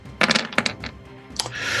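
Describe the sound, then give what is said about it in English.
Dice rolled for damage in a role-playing game clatter across a table in a quick burst of sharp, bright clicks, then a single last tap before a soft, steady hiss. No one speaks. “I'm gonna roll some damage.”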